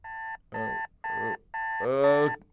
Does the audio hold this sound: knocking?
no